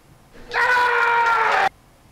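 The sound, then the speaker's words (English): A man lets out one loud, sustained, high-pitched scream lasting just over a second, steady in pitch, then stops abruptly; nothing else is heard around it. “It's just a man screaming.”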